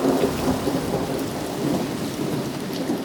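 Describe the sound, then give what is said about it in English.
Cyclone Gabrielle roars steadily: heavy rain hisses without pause while a deep, rolling thunder rumble sits underneath, loud and constant, with no voices. “By the following day, as Cyclone Gabrielle hits, it's full of water again.”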